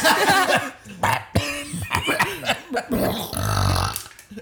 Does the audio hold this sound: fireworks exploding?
no